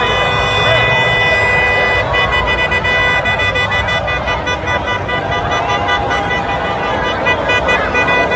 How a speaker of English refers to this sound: Beverly Hills. You hear all the horns. Yeah, yeah. So there are people that are just honking their horns in support of all of these folks who are marching here. Yep. This is Los Angeles.